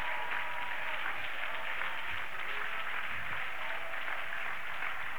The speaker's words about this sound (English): Clap your hands and shout, yes, Lord. Oh, everybody, one more time. Clap real loud and shout.